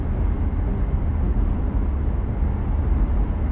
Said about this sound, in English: Well, like, doing a little podcast while I drive home. It's not very far, but I will sit in the car and BS a little bit only because it's just easier for me.